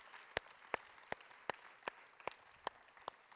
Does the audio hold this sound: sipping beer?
no